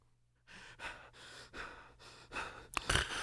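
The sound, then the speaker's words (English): A person imitates heavy breathing up close: four rhythmic, raspy breaths in and out, ending in a sharper, louder gasp. No one speaks. “At least he wouldn't have been the heavy breathing.”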